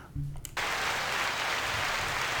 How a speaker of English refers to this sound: Little clap in there.